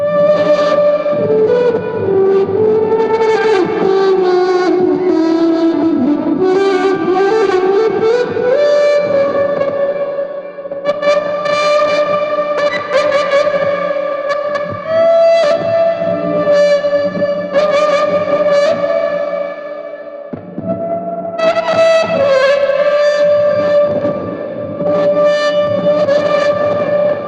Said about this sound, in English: You can also create some, I guess I would call them whale-like sounds. It's not entirely like a whale, but there's moments of this example that just reminds me of whales.